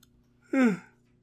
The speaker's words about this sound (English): I'm sorry for the yawns. I really am. I don't like them at all, but it is what it is.